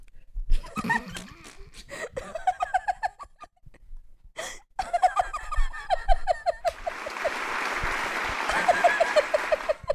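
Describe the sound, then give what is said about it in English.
A short burst of steady applause as self-congratulation fills the last few seconds, loud and dense, following a stretch of high, rhythmic, squeaky vocal sounds like giggling or clucking. “Applause.”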